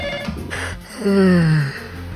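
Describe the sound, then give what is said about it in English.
A telephone rings with bright electronic tones, including a swooping tone that slides downward midway, with no one talking over it. “Speaking of fans, let's go to the phones.”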